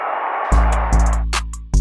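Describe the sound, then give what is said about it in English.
A stadium crowd in Atlanta roars in a steady wash of cheering as the Atlanta Braves win a baseball championship, then three heavy, low booming hits with crackly high edges cut in over the fading crowd noise. “Listen to this crowd.”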